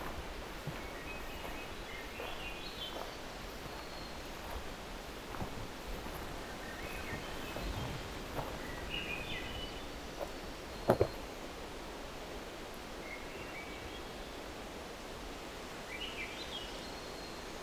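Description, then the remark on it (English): Forest thrushes sing a duet in deep forest, brief fluty phrases answering one another every few seconds, over a steady hiss of woodland ambience with occasional soft rustling. “All of the thrushes that are in deep forest like this, Swainson's hermit, wood thrush, they have this ethereal quality, very light, airy quality to their song.”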